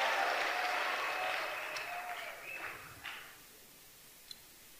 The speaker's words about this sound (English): Clap your hands and be seated.